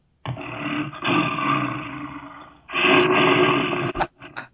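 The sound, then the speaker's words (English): A bear roar sound effect: a deep, rumbling roar in two long, loud bursts, the second rising sharply after a brief dip, ending with a few short huffing grunts. “And bear.”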